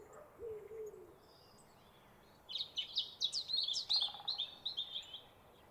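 A single soft, low cooing note from a wood pigeon sounds near the start. A songbird's bright, rapid twittering follows and is louder and more prominent.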